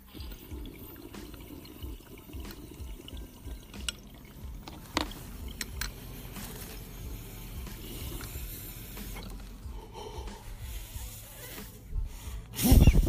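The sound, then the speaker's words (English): A water pipe with a packed bowl bubbles and gurgles steadily as it is smoked, a continuous wet churning with small pops, ending in a louder, sharper burst. “He got his bowl packed. He said he's packing his bowl.”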